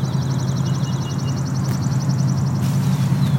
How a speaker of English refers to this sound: So there's a chipping sparrow.